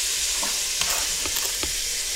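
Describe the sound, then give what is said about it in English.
The first piece of chicken, seasoned with pepper, spice and garlic, sizzles loudly as it goes into a hot pot, a dense steady crackle of frying with a few sharper pops and faint stirring clicks, with no talking. “I'm going to put it in the pot. So here we go. It's the first piece of chicken. Let's hear that sizzle.”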